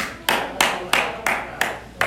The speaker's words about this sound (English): It's like, I hate my current job. Clap if you hate your job.